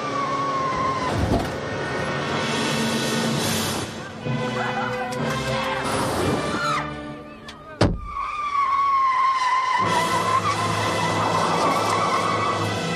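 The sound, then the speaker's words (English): A bus skids to a stop just before it goes off a cliff, with loud, drawn-out tire squeals over heavy vehicle rumble, broken by a single sharp bang midway before the screeching resumes and holds to the end. “Stu stops the bus just before it goes off a cliff, and they finally make it to the dairy farm.”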